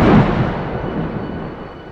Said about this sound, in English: But before she could push send, a thunderclap rang out, nearly deafening her.